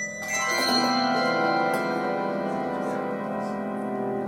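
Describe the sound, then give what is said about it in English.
A handbell, rung at waist height and raised past the ear, rings out with a bright, shimmering metallic tone that sustains for several seconds, its pitch steady while its loudness wavers gently. No one speaks over it. “Ring the bell down here by your waist and then take it up past your ear and see at what point it's the loudest.”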